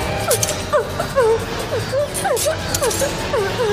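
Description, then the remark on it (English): In a film scene's Foley, Freddy drags butter knife blades repeatedly across a metal pipe, making a rapid series of shrill, bending metallic squeals over a steady, noisy rumble. “Yeah, and he's but what's weird is he's dragging them across a metal pipe, so there should be like a that.”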